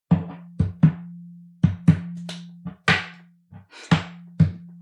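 A shot glass thunks and clacks against a tabletop in the syncopated cup song pattern, about a dozen sharp knocks in uneven groupings over a steady low hum, with no voices.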